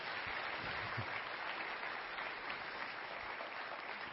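A crowd applauds steadily, a dense, even wash of many hands clapping that holds at a consistent loudness for the full four seconds without pause.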